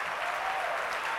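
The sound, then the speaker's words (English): A crowd applauds steadily as a clap offering, many hands clapping in a dense, even wash of sound with no pauses or voices over it. “And I realize that the things I'm about to share with you, out of experience, even my own life, from conception, when I was in my mother's womb, give her a clap offering.”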